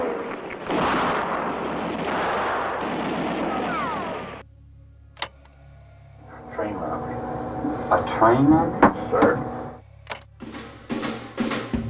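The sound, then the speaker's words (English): A loud dynamite blast set off by masked men on a railroad track outside the city of Jaipuri near Rio de Janeiro, Brazil, roars for several seconds, then gives way to a lower rumble punctuated by sharp cracks and scattered bangs, like debris and secondary pops settling. “Not long after Floyd Holzapfel arrived in Brazil, masked men dynamited the railroad track outside the city of Jaipuri near Rio de Janeiro, derailing a train carrying a mining company's payroll.”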